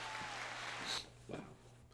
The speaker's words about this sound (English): Oh, wait, no, there's cheering.